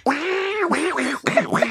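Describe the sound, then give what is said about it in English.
Someone imitates an angry Donald Duck, a raspy, nasal, sputtering squawk that runs in about three loud bursts with no clear words. “Do the duck sound again.”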